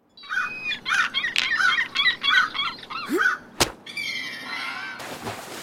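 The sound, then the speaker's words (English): Two birds squawk in a quick, repeated rhythm, then a single sharp impact cracks out as one stone strikes, followed by a burst of agitated chattering and noisy flutter before the sound cuts off. “And the answer is 2 birds with 1 stone.”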